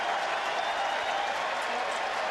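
stadium crowd standing ovation

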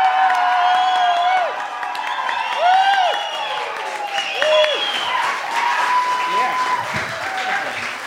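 audience cheering and applause

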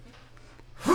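sneeze

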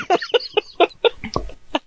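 rooster clucking

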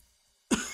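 loud cough

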